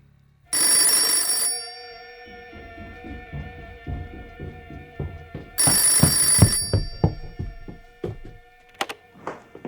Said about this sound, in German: Nach einiger Zeit klingelte das Telefon.